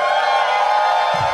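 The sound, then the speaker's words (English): A bar crowd cheering at the Highball, the bar attached to the Alamo Drafthouse South Lamar in Austin, Texas, during Fantastic Fest, after Texas is mentioned; a loud, steady wash of many voices whooping and shouting together for over a second with no single voice standing out, tapering slightly at the end. “But you guys can tell that you guys are a mellow crowd, though, because normally just mentioning Texas in front of Texans gets a much bigger reaction than that.”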